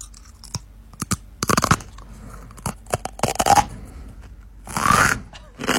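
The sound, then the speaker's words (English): Gritty crunching of broken 40-watt light bulb glass being chewed by a person eating it as a sideshow stunt, coming in irregular sharp bursts with brief quieter pauses between bites, ending in a louder, longer grinding crunch. “That is indeed … eating your broken glass right now from the light bulb. It is a little crunchy”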